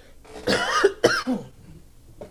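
Two harsh, raspy coughs in quick succession, fairly loud, followed by a faint throaty rasp as it trails off.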